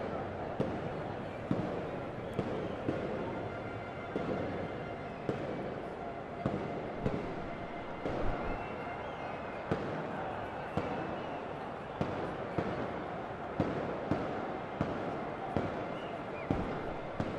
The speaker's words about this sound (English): And here outside the ground, those are some fireworks that are happening.